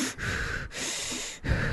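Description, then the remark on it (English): A voice imitates heavy, muffled breathing through a mask worn during a spin class: three long, raspy breaths with brief pauses between them, fairly loud, with no talking. “But it actually, it was one of those masks that if you're breathing, and so while we're doing a spin class, which you can imagine is like full on, and he's breathing,”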